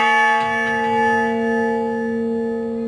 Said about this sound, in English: Tell me more about what motivated you to build the Honor Bell.